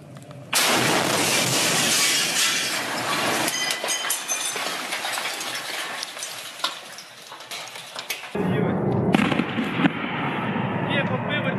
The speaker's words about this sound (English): This, we believe, are helicopters, Russian helicopters crashing into the water, shot down by Ukraine anti-aircraft artillery. Look at these scenes.